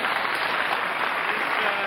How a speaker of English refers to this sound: Applause.